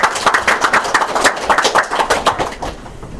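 A crowd applauding, many hands clapping in a dense, steady patter that carries on for about two and a half seconds, then thins out and fades. No one speaks over it.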